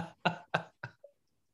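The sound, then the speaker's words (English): A quick run of four harsh coughs in steady rhythm, each fading slightly, ending with a short faint throaty catch before silence; a person's lingering cough after being ill. “And now I'm still dealing with the cough a little, but I'm like, you know what?”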